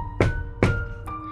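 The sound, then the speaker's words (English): Three knocks on a door at night: two heavy, thudding raps spaced evenly apart, then a lighter, sharper third, all over a faint steady humming tone with no voices. “I just got my pizza rolls out of the oven when there was a knock on the door.”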